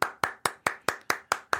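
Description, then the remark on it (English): Eight crisp, evenly spaced hand claps in a steady rhythm, fairly loud, with no talking. “I'm going to applaud that because he doesn't immediately go, see, Gog and Magog is about to occur.”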